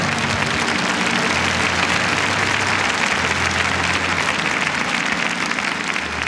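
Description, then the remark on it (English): A crowd applauds steadily, a dense, even wash of many hands clapping at a constant loud level throughout, with a faint low hum underneath and no voices. “Oh, come on, give him a clap.”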